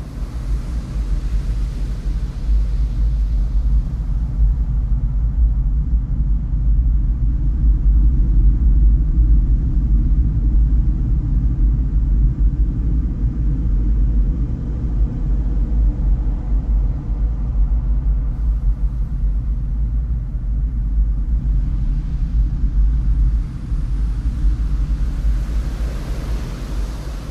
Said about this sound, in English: and it has a special property where that when the wood fibers are excited by acoustic energy, in this case it's the sound of the ocean itself, that the fibers actually vibrate. And inside, we get to listen to nature's largest violin.